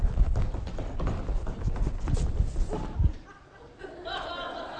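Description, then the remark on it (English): Feet stomp rapidly and heavily on a floor, as if stomping out a small fire, a run of thudding beats lasting about three seconds, then things quiet down with faint voices and a bit of laughter. “I'd be stomping out that fire, boy.”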